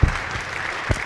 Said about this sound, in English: So now it would be appropriate to clap for Robin and say, thank you for your message.